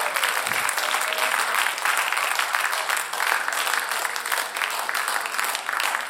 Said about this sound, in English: Come on, clap your hands with me unto him. Clap your hands with me unto him.